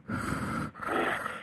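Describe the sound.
Two long, loud, raspy breaths follow each other with a brief pause between, like someone breathing heavily into a phone. A person is making the sound on purpose, and there is no talking.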